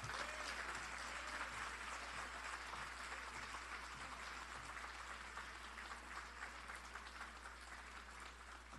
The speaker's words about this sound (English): Give the mayor another round of applause for her inspiring words. We definitely appreciate her dedication and hard work.